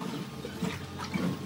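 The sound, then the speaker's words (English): A steady gurgling rush of water pouring into a bottle, continuous for a second or two, with faint bubbling tones rising through it, as a walker on the Camino refills water. “So let's just get some more water here.”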